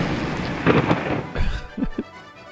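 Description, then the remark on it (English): A short thunder sound effect played to announce a game's lightning round: a loud crackling rumble that swells, then a couple of deep booming thuds before it fades. No voices. “hit the lightning round! Lightning round!”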